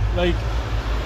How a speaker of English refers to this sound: It definitely has in can form, but Peter Griffin is just leaving there now on a motorbike.